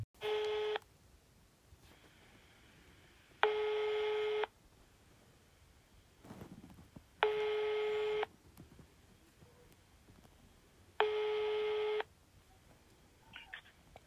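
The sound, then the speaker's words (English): Telephone tones of an outgoing international call to Kenya: four steady electronic beeps, each about a second long, repeating evenly every few seconds over a faint, quiet background with no talking. “We don't have good luck calling Kenya because time difference and all these different phone numbers and zip codes and all that area codes and all this stuff.”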